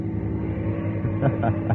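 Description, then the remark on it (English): A car engine drones steadily as the car drives along a mountain road, a low continuous rumble with a faint whine, with brief indistinct voice-like sounds near the end. “Shouldn't you be driving a little bit slower?”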